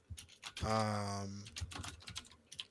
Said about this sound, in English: Tippity-tippity-typing-tippity.